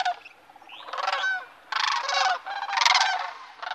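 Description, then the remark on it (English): Loud, rolling bugle calls of cranes ring out early in the morning in several overlapping bursts, harsh and trumpeting, with no voices present. “Early in the morning, you will hear this haunting primeval call.”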